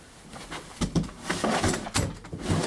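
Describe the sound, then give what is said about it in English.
A table is dragged across a floor and out of a room in a series of irregular scrapes and wooden bumps, moderately loud, with no one speaking. “Let's move the table out of this room.”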